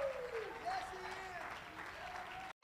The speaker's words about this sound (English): Somebody clap your hands and stand to your feet and give God some praise for what He's about to do.